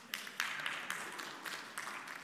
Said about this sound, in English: Those who have cameras, let's get a picture of everybody who just clapped right there.